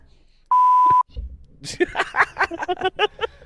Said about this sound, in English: I figured I'd hit one of those eventually if I just kept clicking the censor button.